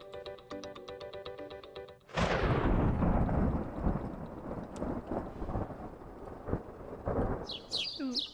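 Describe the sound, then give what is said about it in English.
A few bright bird chirps ring out near the end, rising over a loud, rolling rumble of thunder that follows a short tonal musical opening. “I love the birds.”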